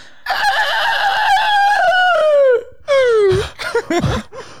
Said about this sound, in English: It was a rooster.